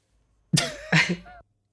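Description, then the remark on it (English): A loud sneeze breaks out in two quick explosive bursts with a rough, voiced edge, then stops abruptly, with silence before and after. “Can't stop sniffling and sneezing, girl.”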